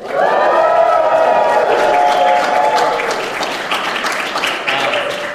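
crowd, audience cheering and applause

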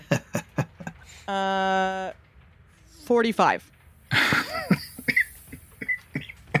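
human body sound, coughing fit

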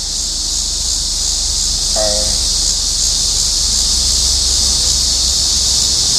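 nature, rain falling outside

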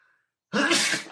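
human body sound, sneeze

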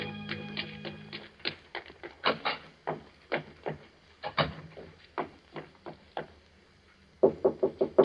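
impact, knock on a door

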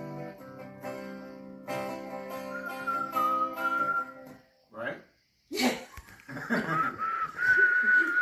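human body sound, attempted whistling

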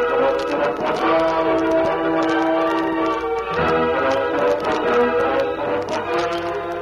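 animal, horse hooves clip-clopping

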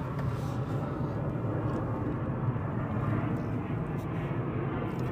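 vehicle, airplane roaring overhead

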